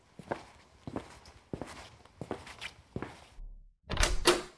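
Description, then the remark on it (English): Five steady footsteps, then a brief, louder rattling burst as a front door is pulled open to answer an unexpected caller at breakfast time. No one speaks. “Be a dear and get the door.”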